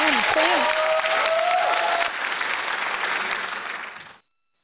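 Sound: round of applause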